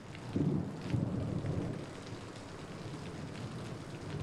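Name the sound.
rain falling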